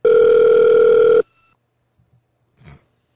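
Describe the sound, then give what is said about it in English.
A single loud, steady electronic telephone ring tone holds for just over a second and cuts off abruptly, followed by near silence and one brief muffled thump. “I think they hung up. Hello? God, it's still ringing.”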